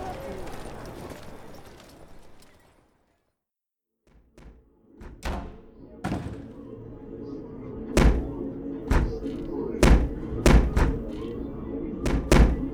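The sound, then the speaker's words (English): Heavy, irregular thuds of fists pounding on a door, loud, coming in a rapid series after a brief quiet, with a low murmur of voices underneath. “Been pounding on the door for hours.”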